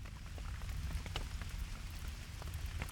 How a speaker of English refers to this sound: I'm just going to let the rain play out because it's I can't believe I'm like begging for rain, because usually rain means that the weather's going to be in the positive degrees.